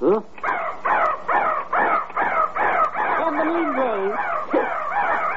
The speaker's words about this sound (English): I wish it was 3 o'clock. Because at 3 o'clock, that little crow pops out of the crow's nest and caws 3 times. I'd like to hear that.